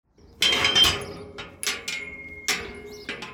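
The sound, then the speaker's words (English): A ball strikes a steel cage enclosure in a game of 5-a-side football again and again, five or so sharp clangs at irregular intervals, each leaving a bright, high metallic ring that hangs briefly before fading. No one speaks. “Ringing around some sort of steel enclosure, it feels like, doesn't it?”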